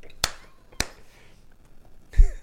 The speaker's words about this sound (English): I literally had to slap my knee laughing because I had something in my mouth.